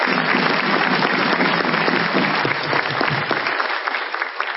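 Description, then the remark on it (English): A church audience claps steadily in a dense, sustained round of applause of welcome at a 50th anniversary service on Collins Avenue, holding an even loudness for several seconds before easing slightly at the end. “So let's give yourselves a round of applause as an expression of your welcome.”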